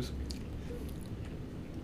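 Chewing food with a few sharp, crackly crunches over a steady, muffled mouth noise, fairly quiet overall.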